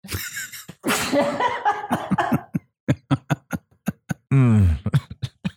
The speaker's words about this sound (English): I'm going to sneeze.